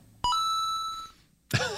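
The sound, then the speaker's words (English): A single bright electronic phone beep rings out clearly, holding a steady pure tone before fading away, followed by a brief burst of another sound right at the end. “At first, I thought that was Everson's phone.”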